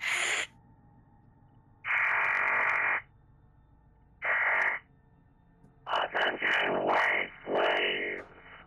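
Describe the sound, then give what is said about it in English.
An intercom crackles in loud, harsh bursts of static: a short blip, a one-second burst, another short one, then a longer choppy stretch, with a low hum in between. “The intercom crackles.”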